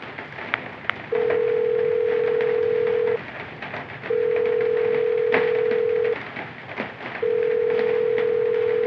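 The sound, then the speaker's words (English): An outgoing phone call ringback tone as someone calls their brother again: three long, steady electronic tones, each about two seconds, separated by short pauses over a faint background hiss. “I'm calling him again.”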